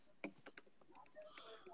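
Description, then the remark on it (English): A sharp mouse click on a computer notification stands out, followed by a few softer clicking taps, all fairly quiet over faint murmuring voice and low background noise. “I'm ready to see if clicking on a notification boots me.”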